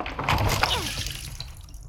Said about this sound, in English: Just hurry up and pour the water over me! Okay, here it goes!